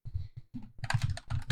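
Rapid keyboard typing while searching online for a video, a dense run of clicks and taps with brief pauses between bursts, heard clearly on its own.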